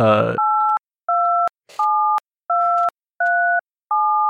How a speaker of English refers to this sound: Okay, well, in English, it's... I'm going to beep all this out, don't worry.